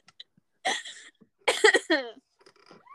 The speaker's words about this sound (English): Because, you see, I'm coughing, but you're not coughing anymore. Whoever said that cough sound?